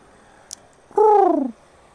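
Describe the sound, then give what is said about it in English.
A voice imitates a pigeon's coo: one short, warbling hoot that slides downward in pitch, fairly loud, after a tiny click. “Not a giant pigeon.”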